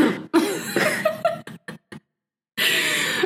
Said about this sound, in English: And then you just hear a cough in the background.